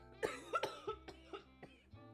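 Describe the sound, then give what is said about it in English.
A fit of harsh, hacking coughs from a person who is high on cannabis, about five or six in quick succession, each a short raspy burst that gradually weakens toward the end, with no talking. “You hear that cough? That's a high cough.”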